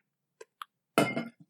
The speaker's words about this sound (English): I knocked over a wine bottle. It was empty. It was empty.